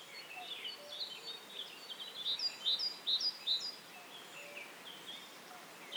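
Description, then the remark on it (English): A grasshopper warbler sings in high, thin bursts of rapid notes, set against a soft hiss of outdoor background with no voices. “Another bird with a very distinctive song, and a song that's it's very hard to tell which direction it's coming from, like the cuckoo, is the grasshopper warbler, which is now red-listed,”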